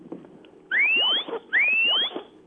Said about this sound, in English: And once the dog has driven the sheep far enough, then you can call the dog back. And that whistle sounds a little bit like this.